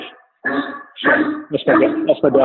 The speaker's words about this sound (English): that's my dog. That's all right. It's Gordy. Oh, the mailman came.